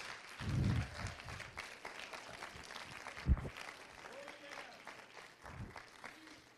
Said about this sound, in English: Would somebody give me a hand clap? Is there anybody in the house?